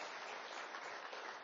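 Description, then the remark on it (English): A steady round of applause from many hands at a church, a dense, continuous patter of clapping at an even loudness throughout, with no voices over it. “He just a round of applause.”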